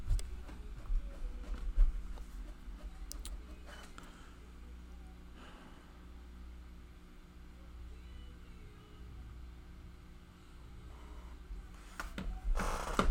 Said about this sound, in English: And my printer is still printing. What is going on?